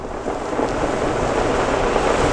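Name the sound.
ocean waves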